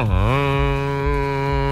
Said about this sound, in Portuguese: E o pacote Pantanal, solta o berrante aí